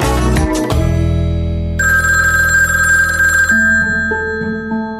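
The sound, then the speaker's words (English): A telephone in a house kitchen rings a week before Thanksgiving in 2008, a loud electronic ringtone of sustained melodic tones stepping between pitches, after a brief noisy burst at the start. No one speaks. “And so a week before Thanksgiving in 2008, the phone rings in the kitchen, and it was the husband”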